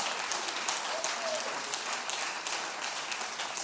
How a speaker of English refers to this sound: you can clap whenever you want during the sermon, okay? Yeah.